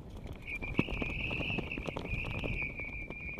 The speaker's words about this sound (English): There are flags marking our safe route, and there's a bit of a whistling breeze today. I don't know, it's about 15 knots. I think the wind chill's about minus 19. And this bamboo stake is having a good old whistle as well as a flap.